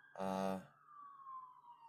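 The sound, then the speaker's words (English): An ambulance passes with a brief loud horn blast, followed by its siren holding a steady, slowly falling tone as it moves away and fades out. “Ambulance. Hope everyone's okay.”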